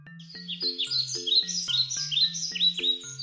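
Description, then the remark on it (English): Busy, high bird chirps and tweets flutter continuously over a steady, plodding low electronic tone that alternates between two notes in a regular rhythm. “Birds, they chirp.”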